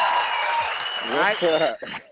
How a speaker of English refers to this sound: So one more time, a round of applause for my homie